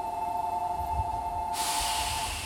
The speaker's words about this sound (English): That's not my metro, but there goes a metro.